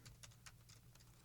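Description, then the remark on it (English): Quiet, quick clicks of typing on a computer keyboard, several keystrokes in an uneven rapid patter over a low steady hum, with no one speaking. “Sorry, I'm typing.”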